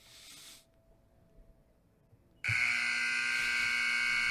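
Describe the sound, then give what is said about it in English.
A brief burst of hiss fades to near silence, then a loud, sustained electronic buzzer blares abruptly with a harsh, steady tone for about two seconds. “Get the buzzer on that one.”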